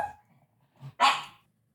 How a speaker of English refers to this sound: Freaking dog.